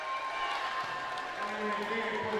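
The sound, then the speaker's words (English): A basketball crowd at a Lady Cavemen game roars steadily throughout during a substitution, a dense, sustained wash of cheering voices with no break or pause. “Substitution through a roar of the crowd.”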